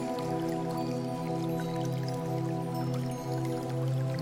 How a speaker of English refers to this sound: All you hear is the sound of water continuously flowing and a few birds tweet somewhere in the bush.